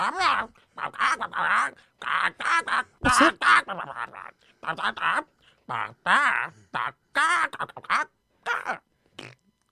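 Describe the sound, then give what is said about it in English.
A person imitates seagull squawks, letting out a rapid, irregular string of loud, nasal, quacking cries with brief gaps between them. “Mr. Seagull, please, we want to know what it's like to poo.”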